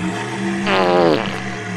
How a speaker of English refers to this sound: I'm a bit worried about putting the farting dinosaur with the farting animals in case it eats them all. But I'm also not sure where else to keep it because it keeps doing this.